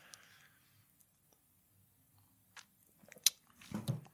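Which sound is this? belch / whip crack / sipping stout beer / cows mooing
sipping stout beer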